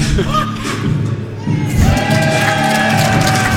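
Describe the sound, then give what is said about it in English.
A large crowd at a live wrestling event roars and cheers loudly and continuously, a dense wall of voices filling the space, with a few dull thuds underneath as the noise swells. “The crowd seems to love that.”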